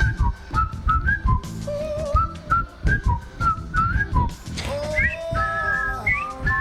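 A bright whistled melody of short, bouncy phrases plays over a live band with steady drums and bass, the whistling prominent, sliding up in quick rising notes near the end.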